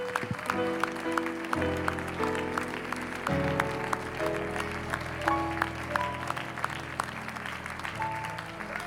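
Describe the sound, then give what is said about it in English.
An audience at a 9:30 morning church service claps hands in praise to God, a dense, steady burst of applause lasting several seconds, with sustained keyboard or organ chords holding underneath and no one speaking. “Could you put your Bibles down, and can we give another hand clap of praise unto our God and thank him?”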